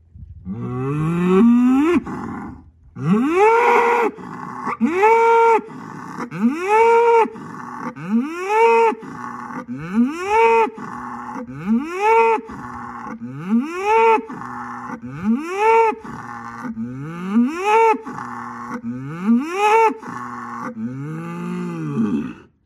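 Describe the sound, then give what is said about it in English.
A bull moos over and over, about a dozen loud, deep calls that rise in pitch and then fall away, repeating at a steady rhythm of roughly one every two seconds with no voices. “Well, bulls are not exactly known for their subtlety. Bullish behavior is loud and domineering.”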